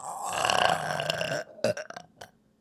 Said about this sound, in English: It's a burping competition. Here, let me do one for you because I do burp on command.